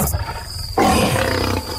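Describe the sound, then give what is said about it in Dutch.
A lion lets out a single loud roar that bursts in suddenly after a brief quieter rumble, holding strong for about a second before easing off. No one speaks. “een tweede leeuw.”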